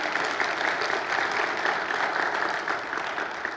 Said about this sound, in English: Everybody's so excited that I could say good morning that they clapped, so they weren't sure what to expect this morning.